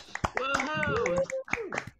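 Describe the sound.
A few sharp hand claps pop out at uneven intervals while voices talk and call out over them, the clapping brief and mixed in with the chatter.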